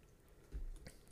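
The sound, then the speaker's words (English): A single quick sip and swallow of water, fairly quiet: a soft wet gulp followed by a small mouth click, with no talking. “I'm gonna take a drink of water real quick just because I don't know how to transition to this next topic.”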